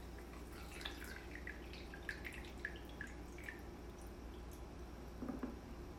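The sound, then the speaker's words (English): Coffee being poured into a cup, heard as quiet liquid drips and small splashes coming in irregular bursts over a low steady background hum, with no talking. “I'm pouring my coffee now.”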